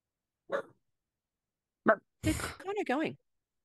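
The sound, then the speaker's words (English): A dog gives two short, separate barks about a second apart, followed by a brief burst of a human voice. “Even the dog agrees.”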